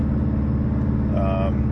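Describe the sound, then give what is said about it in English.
A car drives along a street, keeping to the right because of paint in the middle of the street, its steady low engine and road rumble filling the whole stretch, with a brief higher tonal sound rising near the end. “I'm kind of hanging to the right because the paint's in the middle of the street, so.”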